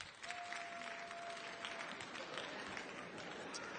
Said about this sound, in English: If you're a 9 and you know it, clap your hand.